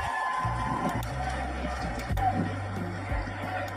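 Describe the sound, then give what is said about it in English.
A massive crowd of anti-war protesters in Moscow, Russia, gathered in a square in the city center, fills the air with a dense, continuous roar of many voices, with faint cheers and a steady low drone that shifts pitch in steps underneath, loud throughout. “It's a video of a massive crowd around the capital of Moscow.”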